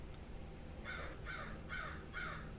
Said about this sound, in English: Thank you, bird.